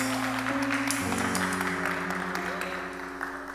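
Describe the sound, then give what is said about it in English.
A church audience claps steadily for a few seconds as praise to God before the offering, a dense patter of many hands, over sustained organ chords that shift pitch partway through. The clapping stays fairly loud throughout. “Well, it's now time for giving, so let's give God a hand clap of praise.”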